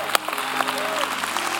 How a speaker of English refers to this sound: When they're walking, I want to celebrate them. They are making a public declaration of their faith in a living God. So right now, if you stand up, come on down to the altar. Let's give them a hand. Come on now. Come on, church.